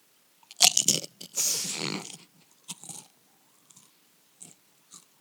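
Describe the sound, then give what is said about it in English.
A thin, crispy chip is bitten at a microphone with a sharp crack, followed by a longer grinding crunch and a few softer, scattered chews trailing off, with no talking. “Okay, it's thin and crispy. Yeah, definitely crispy. I had a big crunch.”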